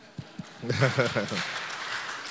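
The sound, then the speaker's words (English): A couple of sharp claps, then an audience breaks into sustained applause for themselves, mixed with cheering voices, settling into a steady wash of clapping. “So would you give yourself a round of applause?”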